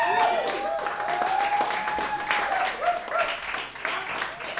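A crowd applauds loudly and steadily, with dense clapping mixed with cheering and a sustained whistle near the start, filling the whole stretch without letting up.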